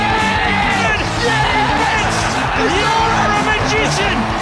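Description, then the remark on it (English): A loud, sustained roar from a stadium crowd cheering a score made with the last kick of the game, with many overlapping voices yelling and whooping in a dense, steady wall of sound that never lets up. “That's what the crowd wanted, and that's exactly what they got.”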